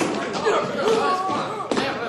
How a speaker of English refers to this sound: Okay, fellas, start stomping.